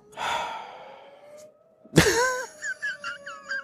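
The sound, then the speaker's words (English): The town fire whistle of Waterloo: a steady, low whistle tone slowly winds upward in pitch and holds. A breathy rush comes first, then a sharp burst and warbling, chirpy sounds over the sustained tone. “That's the fire whistle.”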